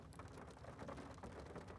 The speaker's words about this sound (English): Do you hear that fucking raindrop? God damn it. Do I need to redo this podcast? Is this going to be a big distraction here in this little... that little patter of raindrops.